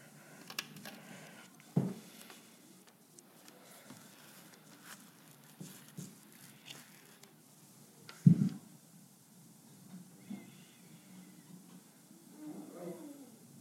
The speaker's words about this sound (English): My dogs.